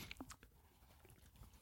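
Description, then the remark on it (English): Soft mouth sounds of someone sipping Mug brand root beer, a brief slurp and swallow near the start followed by faint wet mouth noises, quiet and with no talking. “Took a sip of my mug root beer here.”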